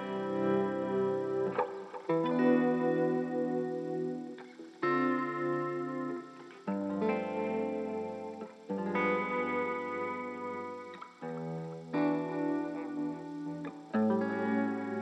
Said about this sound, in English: A lot. It makes me feel like I'm, you know, a lone Scottish piper staring out at the moors, you know. And think about a mournful melody and a hymn-like kind of melody. Reverb gives me the space to let the notes go for a second.